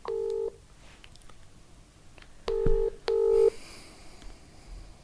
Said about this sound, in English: I'm ringing him now. He fully didn't turn up.